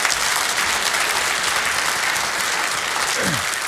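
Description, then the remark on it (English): An audience gives Kay a round of applause, clapping steadily for the whole stretch, a dense, even wash of many hands with no pauses. No one speaks over it. “Give Kay a round of applause.”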